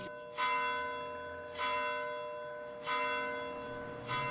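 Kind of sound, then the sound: signal or alarm, bell ringing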